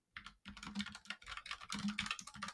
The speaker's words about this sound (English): Hammer away on my mechanical keyboard. Love that.